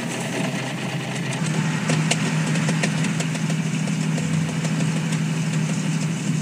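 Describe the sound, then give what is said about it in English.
A car engine idles steadily, a low continuous rumble with a faint rattle and hum holding even throughout, with no voices present. “Well, I've got a car.”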